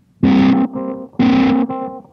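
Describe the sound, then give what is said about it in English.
An electric guitar plays two loud, repeated chord phrases through an H9 pedal's auto filter effect, with a Kingtone fuzz pedal and no reverb, the tone sweeping bright then closing down to a duller, nasal sound on each note, with no talking. “And then I turned on the H9. I have this like auto filter sound, which sounds like this.”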